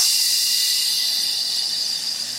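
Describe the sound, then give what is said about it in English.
A voice imitates a loud, steady hiss, a bright high-pitched rush held unbroken for a couple of seconds without talking, mimicking a loud hissing heard in one ear. “It just sounded like it was straight up like hissing.”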